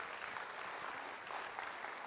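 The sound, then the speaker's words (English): A crowd applauds, a dense, steady wash of many hands clapping at once with no distinct beats, holding an even level throughout with no voices. “A couple of people, yeah, you can clap.”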